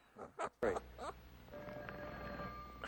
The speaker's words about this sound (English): Jesus Christ, the phone rings in this thing. It's the White House.